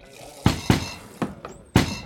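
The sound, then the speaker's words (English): Knocking on a door in a distinct pattern: two sharp raps, a short pause, then three more, the fourth noticeably softer. Solid and fairly loud, with no voices. “That's the knock.”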